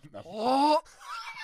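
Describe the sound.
A person vocally imitates a goose mating call: a loud, strained honk that rises in pitch, then trails off into a softer, wavering squawk, with no words spoken.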